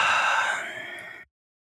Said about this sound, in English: Oh my God, I can't stop yawning. I don't know why.